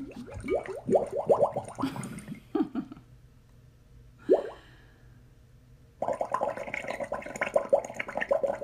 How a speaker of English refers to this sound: This is kind of a fun one. This is called Water Bubbles. No copyright, AR sound effects.